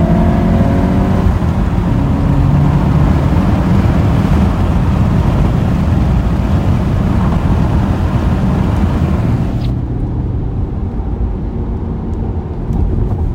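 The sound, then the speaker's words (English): A car engine in third gear drones steadily and loudly from inside the vehicle, holding a low, even pitch under broad road and wind rumble for the whole stretch, with no voices. “Third gear.”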